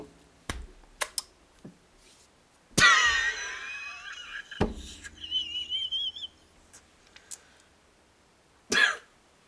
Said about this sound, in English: I think he coughed up a little fucking like dried up semen out of that one.